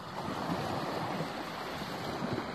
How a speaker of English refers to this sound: And the closer I get to the beach, I hear the waves crashing on the shore. Even on a calm day like today, these small little waves make a hell of a sound.